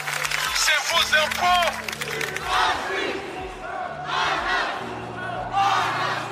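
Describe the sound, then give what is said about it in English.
A large crowd at a mass peaceful protest in London against police violence on a Sunday chants and shouts in loud, rhythmic surges, many voices rising together every second or so over a steady roar of background noise. “Mass peaceful protests in London to condemn police violence Sunday.”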